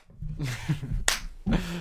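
A few sharp, ragged claps burst out from several people, uneven in timing, over low murmuring voices that talk before and between the hits.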